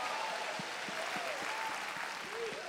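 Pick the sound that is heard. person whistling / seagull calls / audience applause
audience applause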